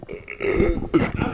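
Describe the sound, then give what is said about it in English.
A low, drawn-out belch rumbles for about a second, with a second short burp right after it, heard alone with no talking. “Sorry, I'm going to belch off Mike.”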